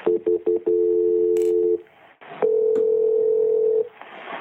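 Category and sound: signal or alarm, telephone ringing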